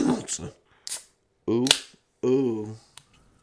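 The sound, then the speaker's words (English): A drink can cracks open with a short, sharp hiss, followed by a couple of crisp clicks while a man lets out drawn-out, pleased vocal sounds. “I'm gonna crack open a fucking fresh, a nice fresh.”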